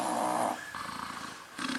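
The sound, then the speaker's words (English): A man's loud, rough gargling snore with a harsh, rattling texture, holding steady before easing slightly mid-breath and then surging loud again. No one speaks over it. “That's a damn death snore, bro.”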